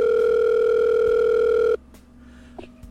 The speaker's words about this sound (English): Suddenly, the phone rang.